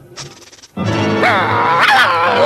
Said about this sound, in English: What are you barking at a stuffed duck for? Stop it before I swat you. You crazy dog, barking at that old duck